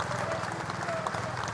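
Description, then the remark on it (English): Thousands of well-wishers lining the streets of Edinburgh's Royal Mile applaud and cheer as a procession from Balmoral to the Palace of Holyrood passes, in a dense, continuous wash of noise that holds steady in loudness, with a faint rhythmic low thumping beneath it. “Thousands of well-wishers lined the streets, falling silent as the procession passed, before bursting into cheers and applause.”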